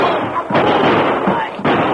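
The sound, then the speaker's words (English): Two loud gunshots in a radio drama crack out roughly a second apart, knocking the guns out of two crooks' hands; each is a sharp bang trailing into a brief noisy decay, set against a steady hissy background with an old-recording quality. “What a draw. Knocked the guns clean out of their hands.”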